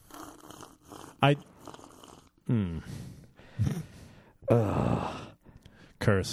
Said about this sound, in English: Sip. Loud sipping.